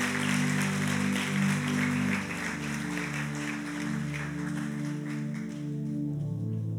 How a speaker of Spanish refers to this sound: Amén y amén. Da un aplauso a Jesús. Pueden sentarse.